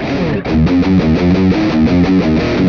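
A heavily distorted electric guitar plays a fast, choppy bridge riff, an E minor scale run on the low sixth string, of low repeated notes with quick rhythmic stabs, loud and dense, with no voices.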